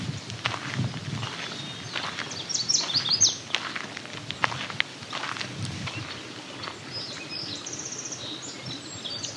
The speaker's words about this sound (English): Song sparrow.